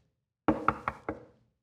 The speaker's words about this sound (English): And there's a knock on the door. And you think it's Abishag. And you open the door.